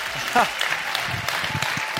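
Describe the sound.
An audience at Hope Church claps steadily during a morning service, welcoming the pastor back after six weeks, a dense wash of many hands with a few louder individual claps standing out, while a voice briefly calls out over the applause.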